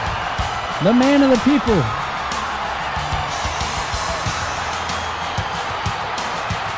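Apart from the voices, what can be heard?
wrestling crowd cheering wildly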